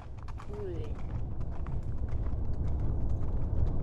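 Hooves of a riderless horse named Polina clip-clop in a quick, steady trot back toward town, the sharp knocks riding over a continuous low rumble. A brief wordless vocal sound rises near the start.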